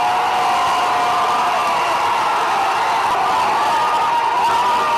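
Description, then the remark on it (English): A large crowd cheers and shouts in celebration as the Kabaka, King of Buganda, arrives, a dense, steady roar of many voices with high excited calls riding over it, loud and unbroken for the whole stretch. “And the big moment finally came when the Kabaka arrived amidst jubilations.”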